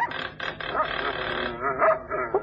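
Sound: several dogs barking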